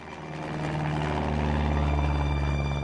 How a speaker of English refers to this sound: We'll start, as one does, inside a Cessna.